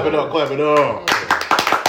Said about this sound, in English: Clap it up. That clap too, goddamn, that was a hell of an introduction.